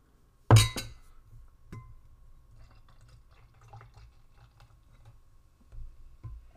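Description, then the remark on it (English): A sharp glassy clink opens, followed by a soft, steady gurgle and fizz of a fruity banana beer pouring into glasses, with a few faint knocks and a second small bump near the end. “Let me pour them first.”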